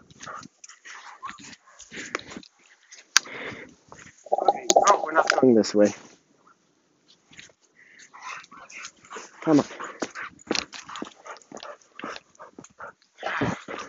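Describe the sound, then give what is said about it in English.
A dog whines and whimpers in short, high, tonal bursts as it heads out for a walk, partly under a person's brief spoken remarks and some rustling movement. “It's a good dog.”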